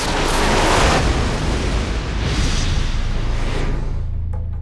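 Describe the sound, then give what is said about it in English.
A lightning bolt strikes through the body of the god Horus with a loud, harsh crackling blast that roars steadily for several seconds, then thins out into a low, lingering rumble at the end. “The scream of his mother was the last thing Horus heard before a bolt of lightning shot through his body.”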